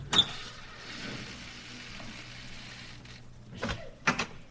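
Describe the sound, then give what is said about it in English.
The front door of the Von Schuller estate is unlatched and opened, with a click at the start, a low mechanical rumble, and a couple of sharp knocks near the end, all over a steady hiss with no voices. “Come on, we'll go in through the front door. I'll open it.”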